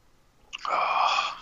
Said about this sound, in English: Ah, yeah, I took a little sip, too.